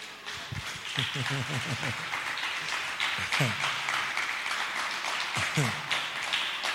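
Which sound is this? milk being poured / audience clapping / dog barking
audience clapping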